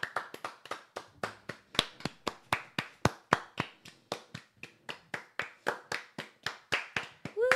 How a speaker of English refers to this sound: Let's have a round of applause for Joe Hartzler's new stream.